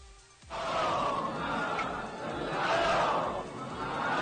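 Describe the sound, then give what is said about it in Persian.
In a neighbourhood mosque, after a brief hush, a crowd suddenly bursts into loud unison chanting of salawat, many voices swelling and surging together in waves for several seconds. “تو یه لحظه همه نگاه ها اومد سمتم و صدای صلوات اومد.”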